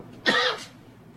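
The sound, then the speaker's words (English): One short, harsh cough from a person with a scratch in their throat, a quick throaty burst lasting about a third of a second, followed by quiet with no talking. “Stop coughing. I got a scratch in my throat.”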